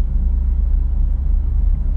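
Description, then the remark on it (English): A steady, heavy low rumble of road traffic fills the background, continuous and fairly loud, like cars idling and crawling with no voices present. “You know, because man, this traffic is bad today.”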